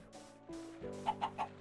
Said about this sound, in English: Alright, that chicken is going to be very annoying